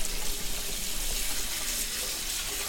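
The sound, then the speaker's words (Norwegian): Steady running cold tap water pours and splashes over a boiled cauliflower in a sink as it is rinsed, a continuous hiss of water with no voices. “Så skyller jeg den I kaldt vann for å stoppe kokeprosessen, sånn at ikke den blir alt for bløt.”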